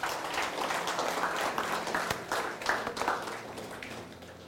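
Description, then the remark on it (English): A church audience claps for the Lord together in a sustained, dense burst of applause that fills the room steadily for several seconds, then begins to thin out slightly near the end. “Let's give the Lord a clap.”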